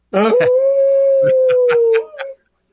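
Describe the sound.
A person imitates a wolf with one long, loud, steady howl held for about two seconds on the Native Roots Radio show, during a sponsor message for Howling for Wolves. A few short background sounds run underneath, then a brief rising tail before it stops.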